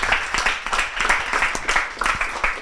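A crowd applauds steadily, with dense, overlapping hand claps sustained at a moderate level throughout, no voices rising above the clapping.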